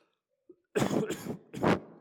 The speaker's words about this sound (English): Sorry about that. Some coughs here this morning.